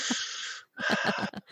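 Two loud, deep, heavy breaths with no talking: a long airy rush, a brief pause, then a second rasping, slightly wheezy breath that trails off.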